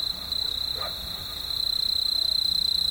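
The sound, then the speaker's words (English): Desert dawn ambience at Gray Ranch, a 500-square-mile nature conservancy easement in the New Mexico panhandle, recorded by Bernie Krause with no planes or cars: a steady, high-pitched insect drone holds throughout, with soft, pulsing frog croaks lower down and a brief faint call near the first second. No one speaks. “Not a plane flies overhead, nor a car drives by this section of Gray Ranch, a 500-square-mile nature conservancy easement in the panhandle of New Mexico.”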